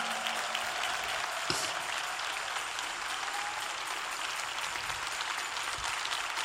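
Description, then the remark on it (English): Steady, dense applause from an audience for Lady Mae Blake, a continuous wash of many hands clapping at an even loudness throughout, with no speech over it. “And could we give Lady Mae Blake a rousing applause?”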